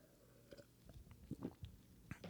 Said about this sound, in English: Let me get a sip of water.